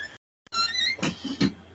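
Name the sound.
squeaky door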